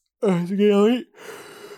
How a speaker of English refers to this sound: You made me yawn.